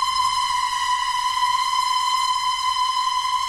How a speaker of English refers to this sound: So take a listen to this. During a percussion session, we found this amazing sound. It was created by a cymbal and a violin bow, and it sounds like a human scream.